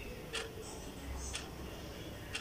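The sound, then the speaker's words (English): A clock with googly eyes stuck on it ticks softly and steadily, about one tick per second, three crisp clicks over a low background hum with no one speaking. “I think you can actually hear the clock ticking in the background.”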